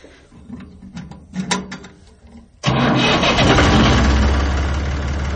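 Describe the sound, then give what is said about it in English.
A farm tractor engine starts up on a farm in rural Tennessee with a six-month pregnant woman sitting on it: a few seconds of clicks and cranking, then a sudden loud catch into a steady, heavy diesel rumble that keeps running. “A 6-month pregnant lady sitting on a tractor. Can we start it?”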